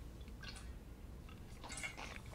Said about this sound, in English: So now with the ninth objection, I'm going to need a drink of water.